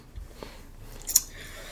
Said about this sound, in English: Try and keep these dice under control here.